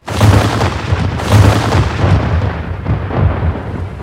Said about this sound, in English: Again. And the gunnery sergeant ordered the cannons to shoot once more.